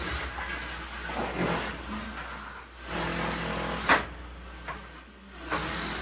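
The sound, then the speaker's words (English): Hand sawing through wood: rough, raspy back-and-forth strokes in an uneven rhythm, some longer and louder than others, with brief pauses between them and no voices. “Hey, I'm going to saw this piece of wood in your name.”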